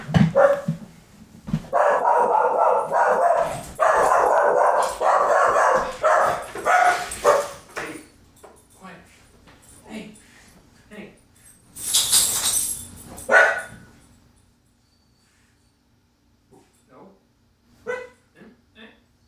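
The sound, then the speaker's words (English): A dog barks loudly and repeatedly for several seconds as the mail arrives, followed by a brief burst of noise and then scattered quieter sounds with occasional soft yips or voices. “Oh my god, the mail's here. The mail is here. I'm going to go pacify a dog.”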